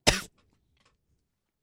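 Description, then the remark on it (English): A single sharp cough, short and forceful, made off the microphone, followed by near silence with only faint background noise. No one speaks. “He was coughing off the mic.”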